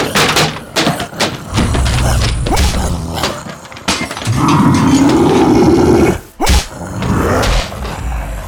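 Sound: monster growling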